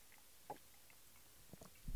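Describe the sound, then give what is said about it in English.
A few soft mouth noises, a quiet slurping sip of Amador whiskey from a glass followed by a couple of small wet swallowing sounds, with a slightly louder burst at the very end. “Take a sip of that.”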